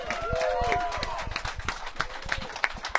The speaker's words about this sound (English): Well, first of all, with the crowd assembled, can we please get the first ovation of the day